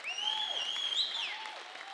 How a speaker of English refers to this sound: Now listen, you might be here and you might be a non-believer and say, they're cheering for a book.